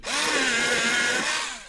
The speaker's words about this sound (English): Oh, here's one. Do you remember the sound of a pencil sharpener? When's the last time it happened? Hold on.